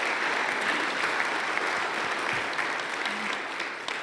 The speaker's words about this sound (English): I also want to thank our decorating team who have helped kind of transform this area. So could we just kind of give them a round of applause this morning?